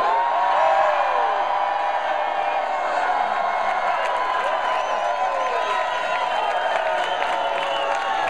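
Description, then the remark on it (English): A large audience stands up and screams and cheers in a dense, continuous roar of many voices, holding loud and steady for the whole stretch, with scattered whoops and faint clapping mixed in. “Folks, if you're excited about that, I want to hear you stand up and scream now!”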